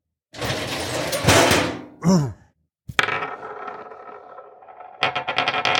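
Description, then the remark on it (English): A drawer scrapes shut and slides open again in quick succession, with a sharp knock, a brief groaning voice between the movements, and a rattling scrape trailing off at the end. “Now close and open my drawer quickly.”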